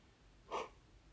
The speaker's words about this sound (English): If you don't quit yawning. Oh my god. Listen, it's been a long day.